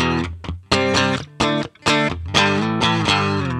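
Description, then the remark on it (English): Heavily distorted electric guitar power chords (bass note plus a fifth above it) strummed in short, chunky bursts with brief gaps, then sustained ringing chords near the end, loud with no voices. “So a power chord is a specific thing, and it's a very open sound, and it sounds really good with distortion because it leaves a lot of room for the distortion to kind of fill in the gaps.”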